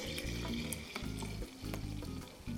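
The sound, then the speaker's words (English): Half of a batch of milk for making yogurt pours steadily into a thick-bottomed pot, a continuous splashing, gurgling rush that keeps up for a few seconds with slight surges and no voices. “And I'm going to take half of my milk and pour it in here.”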